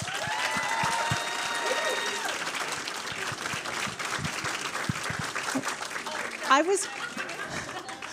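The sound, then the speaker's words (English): A large audience claps steadily for several seconds, a dense, continuous patter of many hands with a few faint whoops mixed in, loud and sustained throughout, at the Landmark in Los Angeles for the film Before You Know It during its opening weekend. “And let's give one more big round of applause for Before You Know It.”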